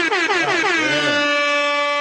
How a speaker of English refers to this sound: I gotta give some air horns.